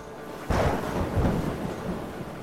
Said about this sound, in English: It was in the Atlantic Ocean, about halfway around the world, when the worst storm hit.